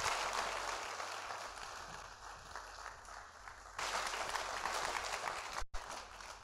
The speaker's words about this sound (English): Clap your hands. Come on, I got 4 minutes to finish this, but wait till next week. Keep on clapping.